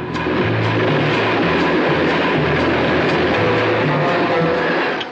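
A train rolls along the rails with a loud, steady rumble and low droning hum, continuous for the whole stretch, with faint rhythmic clatter of the wheels and no voices.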